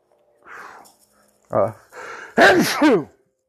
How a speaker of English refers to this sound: See, that's how you, I was giving you a demonstration of how you should cover your sneeze during this social distancing and stuff. That's what I was doing there.